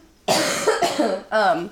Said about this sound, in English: I have to cough, hold on.